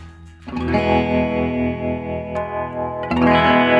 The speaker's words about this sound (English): So I'm going through that's a Earthquaker Devices Ghost Echo, but I got this weird batch of stuff from Crystal Radio, a handcrafted guitar pedal. It was some sort of Kickstarter campaign.